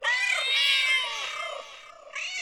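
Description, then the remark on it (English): Several people imitate cats with loud, overlapping, drawn-out meows, tapering off briefly before another meow starts up at the end. “So, without further ado, let's give him a big meow for finally being on the pod.”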